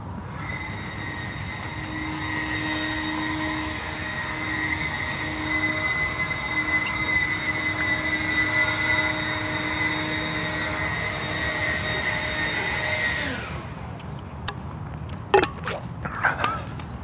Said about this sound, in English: Not quite sure what he's doing in his cupola there, but running some sort of electrical appliance, either a blower or vacuum or something.